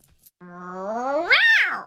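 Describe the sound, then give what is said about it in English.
A person voices a drawn-out, angry cat meow, starting low and growling, then rising sharply in pitch before falling away. One loud vocal imitation with no talking. “Then the angry meow, but we only use this one on rare occasions because overall we're a very happy kitten family.”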